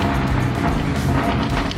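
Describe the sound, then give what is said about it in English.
The 4.7-liter V8 engine of a 2002 Dodge Dakota pickup with a 5-speed manual transmission rumbles loudly and steadily, a deep, dense growl that holds for the whole moment without pauses or voices. “Those car sounds were sent in by Scott with his 2002 Dodge Dakota with the 4.7 liter V8 with a 5-speed manual transmission.”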